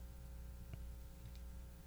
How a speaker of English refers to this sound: We had a hum, yeah.